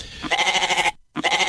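A goat bleats loudly, a wavering nasal cry, pausing briefly before bleating again. No talking.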